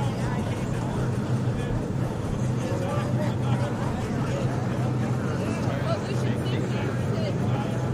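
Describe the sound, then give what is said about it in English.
Race car engines rev before the start of a race as officials look over the cars, in a dense, continuous low rumble that stays loud and fairly steady for the whole stretch, with indistinct voices blending into the noisy background. “Now it's the officials staring at the cars, revving a little more.”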